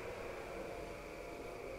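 A steady, rushing roar of tornado wind fills the whole stretch, broad and unbroken like a constant howl, fairly soft, with no voices present.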